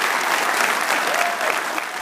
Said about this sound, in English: And I want everybody in this audience to not applaud just for him, but for yourselves. Let's have a round of applause for everybody here at Sacred Heart University.